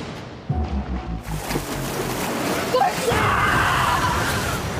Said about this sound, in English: And now it's a bunch of screaming and water splashing. So we'll save everyone the rest of that trailer.